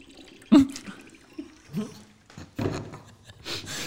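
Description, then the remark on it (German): Someone drinks from a Refill X drinking bottle that whistles when drunk from: a series of irregular liquid slurps and gulps, with a thin whistling tone from the bottle mixed into the sips, loud then tapering off and returning. “So, und das Coolste ist, und das ist aber richtig cool, sie pfeift, wenn man trinkt.”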